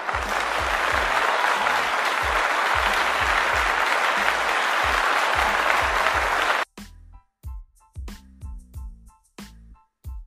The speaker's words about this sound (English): Now please, give a big round of applause to my special guest,